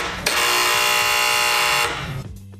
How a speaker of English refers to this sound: Is that the right buzzer?